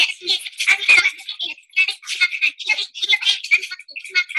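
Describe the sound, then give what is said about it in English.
A high-pitched child's voice chopped into rapid, choppy fragments of nonsense speech, tumbling along in quick bursts with brief gaps, close and fairly loud, with no recognizable words. “So I got my little grandson to count to 20, and I made what I call toddler gibberish.”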